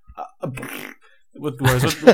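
A voice blows a buzzy, sputtering raspberry to imitate a fart, followed by a longer, louder vocal burst, with no other sounds.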